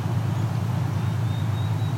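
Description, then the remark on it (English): A steady, low rumble of urban traffic with cars moving all around, in Dundas along the Niagara Escarpment, a continuous droning wash of engine and road noise with no voices. “And we've got cars all over.”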